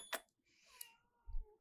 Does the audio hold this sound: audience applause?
no